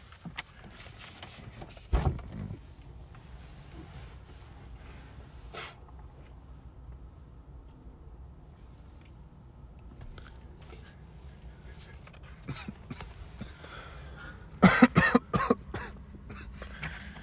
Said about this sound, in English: What's going on? I tried to sneeze, didn't come out.